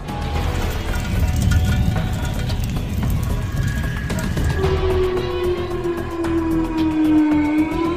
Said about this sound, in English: Tornado sirens in Chicago. Dude, the tornado's forming right in front of my house.